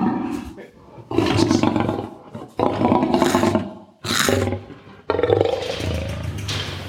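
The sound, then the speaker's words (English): A lion coming up to the mesh to taste a bit of chicken lets out a series of deep, rumbling roars and growls in four or five loud bursts, each swelling and fading with brief pauses between, thick with low, gravelly grumbling. “you can hear he's got a really deep grumble. It's almost like a Harley Davidson roar.”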